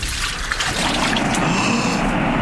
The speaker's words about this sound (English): The water! It is parting, and we can cross on dry land.